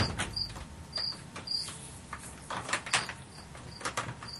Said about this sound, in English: I like that fade out with the crickets. Oh, I think they're great. They're great companions.